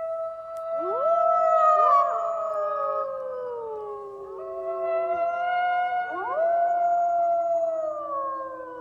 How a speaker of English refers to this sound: It's not hard to recognize the call of the wolf.